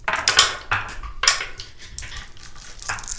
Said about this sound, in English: And on the shop, they offer walnut, maple, and cherry options. Not only are they built really good, but they sound really cool when you roll dice into them.